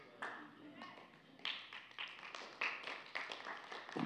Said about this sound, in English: Thanks for the golf clap. I'm just playing with you.